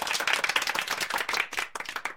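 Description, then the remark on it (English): A short burst of clapping, many quick overlapping claps forming brief applause, fairly loud and steady before thinning out toward the end, with no voices over it. “So if you are listening to this podcast on a podcast app right now, a round of applause”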